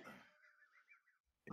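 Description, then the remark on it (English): A person clears their throat with a breathy cough: a rough burst, a thin wheezy squeak trailing off, then another sharp cough cut off at the end. No one speaks. “Wait, why are you coughing like that?”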